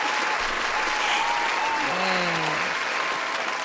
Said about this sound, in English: The queen is here. Round of applause for the queen.